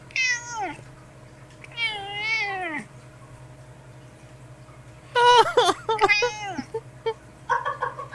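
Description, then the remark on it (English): A male cat meows: two drawn-out, wavering meows, a few seconds of quiet, then a louder burst of insistent, overlapping meows ending with a shorter cry. “Come meow into the microphone.”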